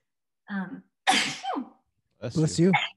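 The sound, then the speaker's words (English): A single loud sneeze: a brief voiced catch of breath, then a sharp, hissy burst. A pause follows before a stretch of voice at the end. “Bless you.”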